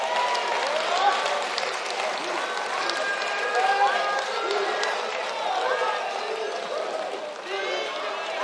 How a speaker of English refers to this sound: Oh, they sang this morning. Give them a hand clap.